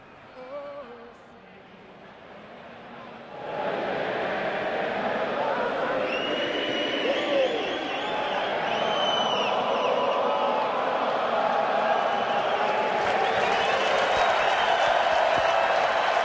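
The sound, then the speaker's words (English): A large, mostly Canadian hockey crowd at a Leafs-Sabres game in Toronto sings the U.S. national anthem together for a few seconds after the microphone malfunctioned, then erupts into a loud, sustained roar of cheering and applause with whistles that swells and carries on to the end. “When the microphone malfunctioned, the mostly Canadian crowd jumped in to finish the U.S. anthem.”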